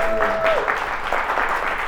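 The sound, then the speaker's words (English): A crowd at an event in Chicago applauds everybody who organized it, dense clapping that holds at an even loudness throughout, with a brief whistle-like tone at the start as the clapping begins. “Yeah, can we give a round of applause to everybody who made this happen?”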